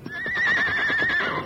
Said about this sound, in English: As he entered the alley, he heard Scout's familiar whinny.